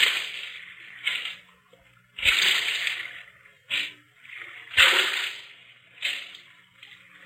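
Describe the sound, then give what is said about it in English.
A boatman rows a boat around the Blue Grotto: oars dip and pull through water in a steady rhythm, each stroke a splashy swish followed by sloshing drips, repeating about every second with no voices. “Now, I will row you round the Blue Grotto.”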